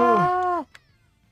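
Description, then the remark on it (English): A single drawn-out cartoon cat meow in a video game, as kitty cats eject from a body, loud and sliding downward and ending abruptly, followed by a faint short click and quiet background. “It's the kitty cats.”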